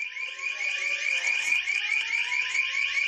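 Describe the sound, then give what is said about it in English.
Several sirens wail together at once, steady and loud, their high, wavering tones overlapping and slowly gliding in pitch throughout, with no voices over them. “Here go your sirens now.”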